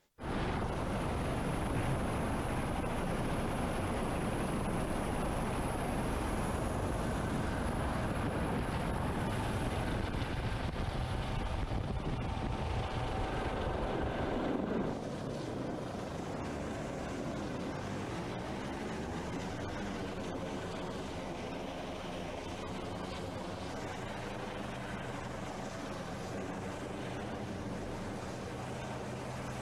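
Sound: helicopter hovering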